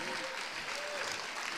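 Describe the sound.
An audience applauds with a steady, dense wash of clapping, mixed with a few cheering voices and a brief high whoop, sustained at an even level throughout.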